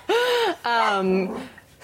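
A dog named Goose gives two drawn-out, fairly loud vocal barks with a sliding, whiny pitch, the second one longer and trailing off; no one talks over it.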